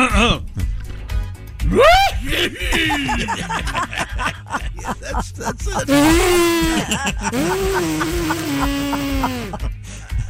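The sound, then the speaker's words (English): A man's voice imitates radio host Tom Griswold sneezing and blowing his nose on The Bob and Tom Show: strained, squeaky pitch-swooping gasps and snorts build up, then a long, loud, noisy honking blast follows, trailing off in wheezy tones. “Here is my impression of Tom Griswold sneezing and blowing his nose.”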